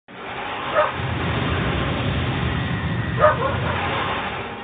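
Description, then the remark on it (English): A dog barks twice, a few seconds apart, each bark short and sharp, over a steady low rumbling background noise. “With dog accompaniment.”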